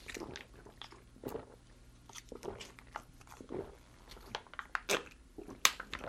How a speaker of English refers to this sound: He wasn't kidding when he said drink it fast. Chug it. Yeah, and don't burp.